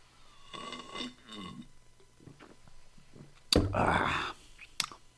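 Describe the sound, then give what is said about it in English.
A person lets out a couple of croaky burps after drinking kombucha, one drawn-out and gurgling near the start and a louder, rougher one toward the end, with quiet breathy noises between. “You gotta know culture, that's why you're burping.”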